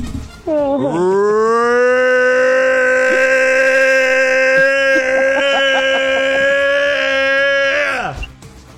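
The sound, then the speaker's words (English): A person's voice imitates a Bigfoot call as an impression of Matt Moneymaker from the TV show Finding Bigfoot: one loud, drawn-out moaning howl that swoops up, holds a steady pitch for about seven seconds, then drops away abruptly. “That was my best impression of Matt Moneymaker.”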